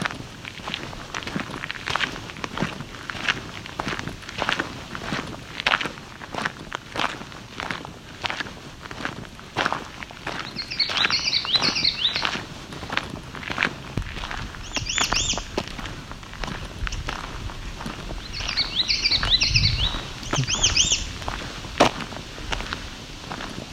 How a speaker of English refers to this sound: And another warbler here. Let's see if I can identify this other warbler. Okay. Trees, and I just can't. Oh, there we go. So, of course, it's an American red start. Another variant on its call.